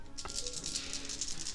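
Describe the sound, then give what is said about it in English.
A force coin is flipped during a tabletop role-playing game session and clatters down, followed by a steady, pulsing metallic rattle as it spins and settles on a hard surface. Quiet, with no talking. “Flip a force coin.”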